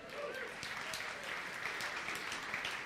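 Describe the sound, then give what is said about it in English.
Steady applause from an audience clapping for a poem about a typical American Christmas, many hands clapping in a dense, continuous patter at moderate volume that holds evenly without fading. “Some of you are clapping because you like my clever poem.”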